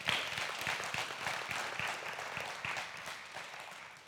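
A crowd at a Celebrate Recovery ministry gathering claps steadily for its ministry leader, a dense wash of many hands with sharp individual claps poking through, loud at first and gradually thinning toward the end.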